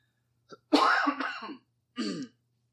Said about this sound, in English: I don't know what this cough is. I'm fine.